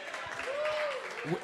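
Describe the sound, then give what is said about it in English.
A crowd claps steadily throughout the short moment, a dense wash of applause, with a brief rising-and-falling whoop or whistle cutting through in the middle, applauding the sponsor, the email marketing company Emma. “Can we get a round of applause for our sponsor, please?”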